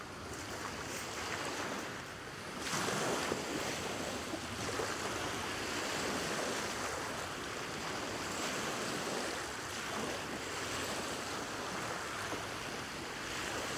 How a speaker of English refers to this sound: The waves. Always the waves first.